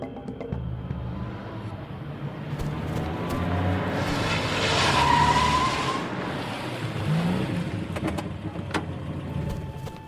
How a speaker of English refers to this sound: Scoot over. I'm driving. Suspect is headed north on Mulberry Lane. Copy that. We're in pursuit. Sir, I've never been in a car chase before.